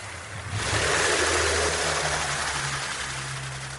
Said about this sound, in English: somebody way in the distance started a little outboard motor on a little skiff and went driving away and completely drowned out all the recording I was trying to make.